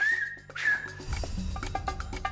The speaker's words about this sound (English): Pe o insulă în Canare există un limbaj fluierat. Vei veni pe insulă și vei învăța acest limbaj. Everything we speak can be whistled.